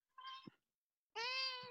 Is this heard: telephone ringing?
no